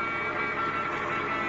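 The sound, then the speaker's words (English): A car with four men in it approaches on the road, giving off a steady, rumbling engine drone with constant road noise and no voices, holding an even loudness through the short stretch. “Only it ain't a truck, Red. I can see it clearly now. It's a car.”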